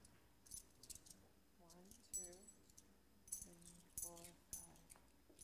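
Coins clink and jingle in several short bursts as a container is opened and handled up close, while voices murmur quietly alongside the metallic rattling.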